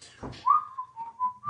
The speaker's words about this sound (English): All right, so you're, and he's whistling while you're working, right?